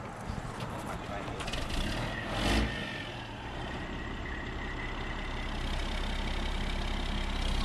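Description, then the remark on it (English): A massive moving truck's engine rumbles steadily, surging briefly in a loud burst, then settles into a low, continuous drone that slowly builds as the truck pulls away from the curb. “The massive moving truck just pulled away from the curb, and now the hard part of moving is here, the unpacking.”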